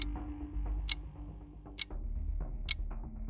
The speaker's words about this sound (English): You hear a soft ticking noise. Is it getting faster or is it remaining? It's remaining steady.